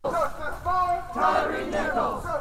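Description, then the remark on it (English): Dozens of protesters chant in unison at a Sunday march in Urbana, many voices rising and falling together in loud, rhythmic phrases repeated over and over, chanting the name of Tyree Nichols, a Memphis man who died after being beaten by police officers. The march, organized by the Party for Socialism and Liberation, went from the county courthouse to Urbana City Hall. “Dozens of protesters marched Sunday, chanting the name of the Memphis man who died days after being beaten by police officers.”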